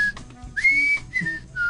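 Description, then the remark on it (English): A person whistles the Andy Griffith Show theme, a bright, jaunty tune in a few clear sustained notes with short gaps between phrases, moderately loud, with no talking. “Andy Griffith Whistle.”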